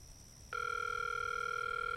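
A phone call rings through the earpiece before going to voicemail: after a brief moment of faint hiss, a loud, steady electronic ringing tone starts and holds unbroken to the end, with no voices.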